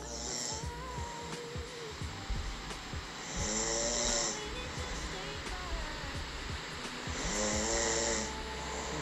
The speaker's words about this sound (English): And apparently it recorded 7 minutes of me snoring. I didn't know I snored. Try and play some for you.